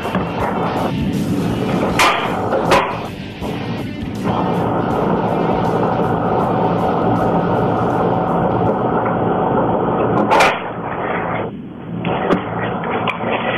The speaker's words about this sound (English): Give me just a second. Let me turn down this air conditioner. Hold on just a second, and we're going to continue to do this.